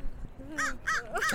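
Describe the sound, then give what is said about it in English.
A crow or raven at the Bioneers conference gives three harsh, rasping caws in quick, evenly spaced succession, clear, with a faint low murmur of a voice, someone talking to the bird, just before the calls. “is currently talking with this crow or this raven.”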